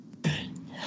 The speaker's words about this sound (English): Bless you. Oh, sorry. I thought I muted it. I'm so sorry.